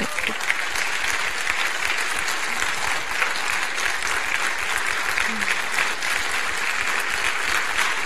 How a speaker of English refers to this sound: So can we just stop a moment and just give Peggy a big round of applause?